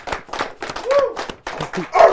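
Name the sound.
people clapping hands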